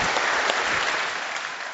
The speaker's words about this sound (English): Can we give him a round of applause and we'll listen to him this morning?